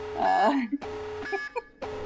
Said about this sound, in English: Moving on, sounding the spoiler alarm.